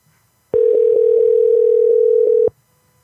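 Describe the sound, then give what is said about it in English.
A telephone ringback tone on an outgoing call to a phone number that was read out: one steady, loud, low-pitched electronic hum lasting about two seconds, then silence. No one speaks. “Let's call this cat.”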